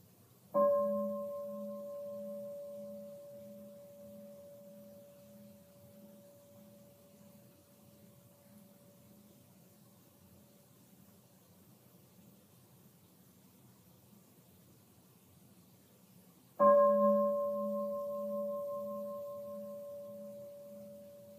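A meditation bell is struck twice, about sixteen seconds apart. Each strike rings out in a clear, steady tone with a low hum beneath it and fades slowly over many seconds.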